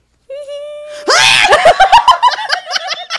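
A woman lets out a loud, excited high-pitched squeal into the microphone on receiving a Kermit plush as a gift, bursting into a shrieking scream that breaks into rapid, choppy squeals and giggly gasps.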